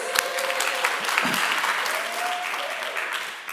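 crowd, church audience applauding

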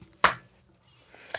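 human body sound, single hand clap

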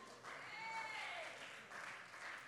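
crowd, sparse clapping

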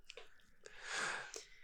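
food or drink, chewing crunchy food

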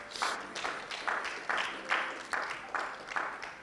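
crowd, audience applause

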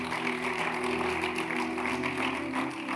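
crowd, audience clapping

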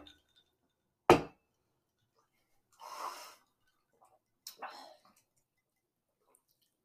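household object, glasses clinking

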